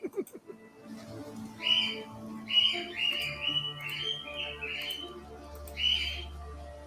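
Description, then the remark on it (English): Harsh squawks of spooky bird-bone creatures stalking the sandy seashore at Rayclaws repeat in a ragged series of loud calls over a low, steady rumble like surf on a shore, with no talking. “Squawking, separating spooks, stalking our sandy seashore. Blighted, bedeviled bird bones, beaking about our business.”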